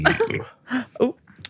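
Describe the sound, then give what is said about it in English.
A few short, throaty burps pop out in quick succession, moderately loud, with brief vocal sounds around them. “Wow, another burp.”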